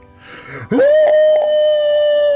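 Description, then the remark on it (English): A person imitates the scream of a screaming face rock as a Sasquatch howl: a short rough vocal onset swoops up into one loud, steady, sustained howling tone, held without a break to the end. “That's more of a howl than a scream, it's really. It's more of a Sasquatch call.”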